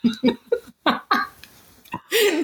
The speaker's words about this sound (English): Let's ask our listeners, can you hear the coughing in the background? Someone might not be okay. We're going to soldier on.